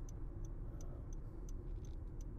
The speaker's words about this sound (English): Traffic is no lighter today than it would be otherwise, although it's not rush hour like it was yesterday.